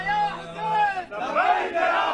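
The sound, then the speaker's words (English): At the funeral of a Hezbollah fighter killed on Lebanon's southern border, a crowd shouts battle cries together that they are ready to die in the battle with Israel, loud and continuous, the rising and falling chant pausing briefly near the middle before surging back louder and more ragged. “They're shouting they're all ready to die in this latest battle with Israel.”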